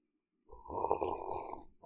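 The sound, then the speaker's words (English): A single loud, airy slurp as someone sips coffee from a cup, lasting just over a second with a wet, hissy texture, and no talking. “I know that like you're not supposed to eat on mic or whatever, but I do have a cup of coffee here, so I'm gonna do a little sip of my coffee.”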